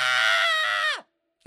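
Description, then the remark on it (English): A voice imitates the high, shrill scream of a mer-girl, held loud and steady for about a second before sliding downward and cutting off, followed by silence and a brief sound at the very end. “You know, I expect the scream of a mer-girl to be a little more not that.”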